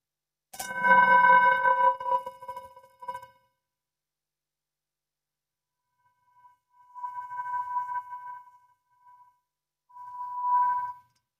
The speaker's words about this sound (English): As we listen to the chime, let's remember our connection to each other and the world around us.